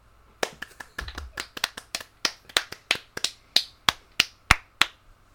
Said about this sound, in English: He just clapped for himself there? What a piece of shit. That's not me clapping, by the way.